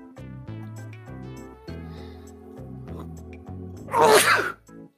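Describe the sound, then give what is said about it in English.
A single loud, explosive sneeze bursts out near the end, sharp, over a bright, steady musical backing that plays throughout. “So, for safety and other reasons, do not hold in a sneeze.”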